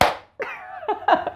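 A single sharp hand clap rings out and quickly fades, followed by bursts of voiced, laughter-like vocal sounds.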